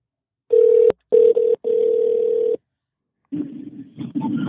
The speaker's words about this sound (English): Let's see if this works. First time calling someone live while recording on the podcast.